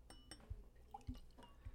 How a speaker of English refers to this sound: I can't believe I'm actually pouring a soda in a glass.